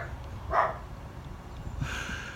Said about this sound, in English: Could be the mailman, you know. He barks at mailman.